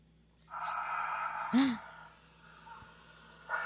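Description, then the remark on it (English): Heavy breathing of a man on a recorded phone call, over a thin, phone-like line: a long drawn-out exhale, a brief gasping catch midway, then quieter breaths and a fresh intake at the end. No one speaks. “Oh, it's just him breathing.”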